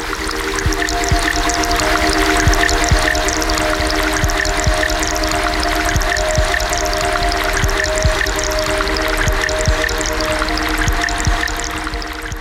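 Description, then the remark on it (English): Steady, continuous rushing of flowing river water, loud throughout, with scattered small drips and clicks and a faint low sustained hum underneath. No one speaks. “And I guess that kind of speaks to how a river is constantly changing, you know?”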